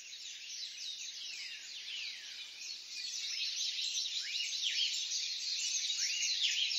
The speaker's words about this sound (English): Morning 2, I recorded a dawn chorus where the birds wake up. The world wakes up as the sun comes up.